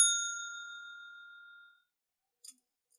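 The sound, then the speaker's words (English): A single bright bell ding rings out with a sharp strike and a clear tone that slowly fades over about two seconds, followed by a faint small click. “So I'm gonna hit the bell here.”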